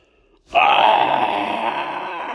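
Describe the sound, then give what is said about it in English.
After a brief moment of quiet, a voice bursts into a loud, sustained, shrill scream imitating the character Toph releasing a sonic wave through the mouth, holding steady and unbroken for about two seconds. “I release a sonic wave through my mouth.”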